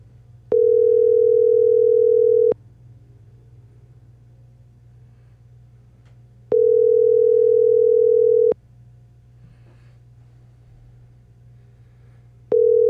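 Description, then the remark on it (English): A phone line rings out on an unanswered call dialled with *67, before being forwarded to an automated voice messaging system: a steady electronic ringback tone sounds in two-second bursts separated by long pauses, repeating three times over a faint low hum. “Your call has been forwarded to an automated voice messaging system.”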